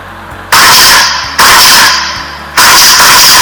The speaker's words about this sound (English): Right before he opened his front door, he heard gunshots in the distance.